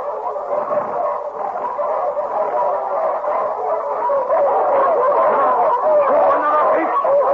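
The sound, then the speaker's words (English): A pack of wolves yelps, barks and howls together in a dense, unbroken chorus, their overlapping high cries fairly loud for several seconds. “When we run, the wolves chase us as fast as they can, do they not?”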